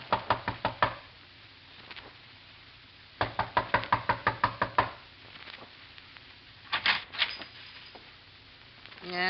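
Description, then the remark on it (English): Several bursts of sharp, rapid knocking on a door, each a quick series of raps separated by short pauses, loud with a faint low hum underneath. “A knock.”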